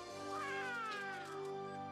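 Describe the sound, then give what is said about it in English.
A cat meows in a long, drawn-out, wavering cry that rises and falls, loud, with no voices over it. “Wait, he has a cat?”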